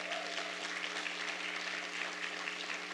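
An audience claps together in a dense, steady wash of applause that holds evenly for the full three seconds, with a low electrical hum running underneath and no voices.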